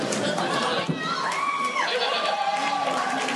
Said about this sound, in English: That's right, cheer on freelancers for being late. That's a great idea.